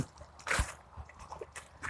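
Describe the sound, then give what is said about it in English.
A single quick slurping first sip from a morning's first cup of hot coffee, fairly quiet, followed by a couple of soft faint rustles and a light swallow-like noise. No one speaks. “God, I love that first sip.”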